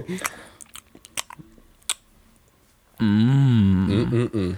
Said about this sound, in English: Go over there, grab the pretzels, start munching them.